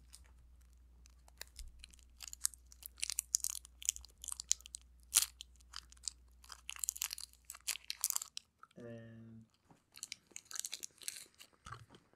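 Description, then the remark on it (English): Someone chews a Snickers candy bar with loud, wet, irregular crunches for several seconds, broken briefly by a short hummed tone before the chewing resumes. No one talks. “Do you want a Snickers? I'll take a Snickers.”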